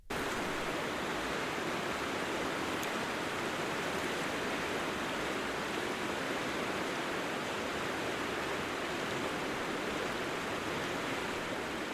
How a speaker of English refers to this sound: The next box of recordings, in this case folders on my hard drive, contains the sound of the glacier river Jökulsá á Sólheimasandi.